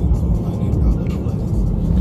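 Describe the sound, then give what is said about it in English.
A steady, loud low rumble of a car engine and road noise, heard from inside a moving vehicle, continuous and even throughout the short stretch. “Where I just take you wherever I'm going. Sometimes I like to go for a drive.”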